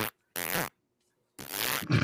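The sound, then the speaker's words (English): Two loud fart sounds: a short sputtering burst followed after a pause by a longer, ragged, buzzing one that trails off into a final rumble. No talking. “Yeah, them morning farts are the worst, bro.”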